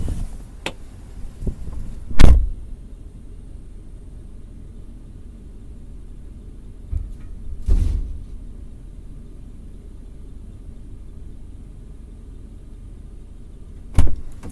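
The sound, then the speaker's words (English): Three heavy metallic clunks, spaced several seconds apart, as a heavy metal trailer hitch assembly, with its receiver and frame, is loaded as scrap, over a low outdoor rumble with no talking. “That was a trailer hitch assembly. Not just the drawbar, but the whole receiver and the heavy metal frame.”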